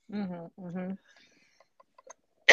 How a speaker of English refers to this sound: Oh, God. So sorry. Let me take a sip of water. I have so much editing to do for these coughs.